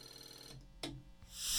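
A telephone rings in a steady electronic tone, moderately loud, then a brief sharp clatter and a rising hiss follow. No one speaks.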